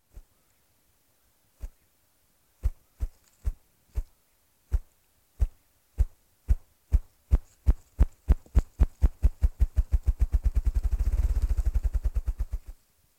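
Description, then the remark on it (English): A partridge drums with its wings in spring: deep, hollow thumps begin slowly and widely spaced, then quicken steadily into a rapid, blurred whirr that swells and abruptly stops, with no voices. “His drum is one of the most welcome and beautiful sounds of spring.”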